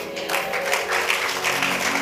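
crowd, audience clapping hands

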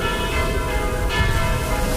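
signal or alarm, church bells ringing

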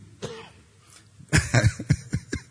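human body sound, coughing and throat clearing

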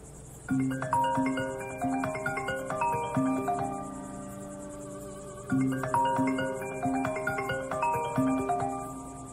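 signal or alarm, mobile phone ringing

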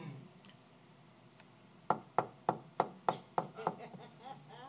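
impact, knocking on a door

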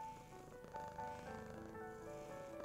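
animal, cat purring

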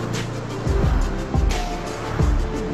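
vehicle, car passing by

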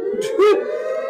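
sound effect, siren sound effect

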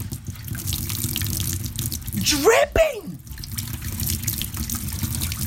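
sound effect, liquid dripping

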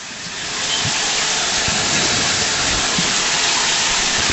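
nature, rain

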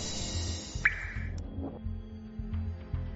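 nature, water dripping

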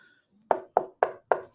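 impact, knocking on wood

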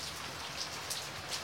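nature, raindrops falling

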